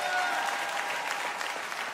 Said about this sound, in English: Come on, take 15 seconds and clap your hands. Give God a mighty shout.